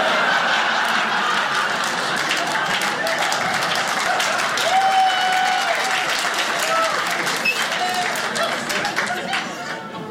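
An audience bursts into sustained applause after a comedian's joke about baptism, a dense, steady wash of clapping lasting about ten seconds, with a few scattered whoops and crowd murmurs mixed in before it begins to taper off.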